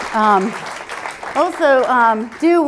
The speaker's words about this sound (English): We can thank the National MS Society, who are here today, so we'll give a quick round of applause for that.